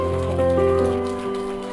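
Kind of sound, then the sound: crowd, audience clapping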